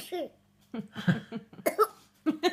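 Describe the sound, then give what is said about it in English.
A series of short, rough coughs from a pet in a played video, about five quick bursts with brief pauses between them, moderately loud, with a slightly squeaky, voice-like quality. “And then she coughs, doesn't she?”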